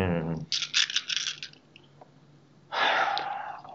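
A double handful of dice clatters onto a table in quick bright rattles, then settles; after a pause a breathy rush of noise follows, moderately loud.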